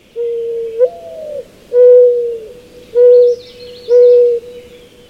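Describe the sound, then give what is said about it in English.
A mourning dove coos: a long, sliding opening note followed by three soft, hollow hoots at an even, unhurried pace. Faint chirps from another bird sound in the background. “Morning doves, however, are common native North American birds that are easily attracted to spilled seed under bird feeders across most of the U.S.”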